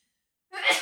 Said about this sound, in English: God bless you. Salute. I've been waiting for that for like a good 5 minutes to come out naturally.